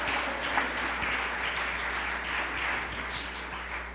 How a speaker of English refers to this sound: Can you clap your hands and shout, there's power in the name of Jesus.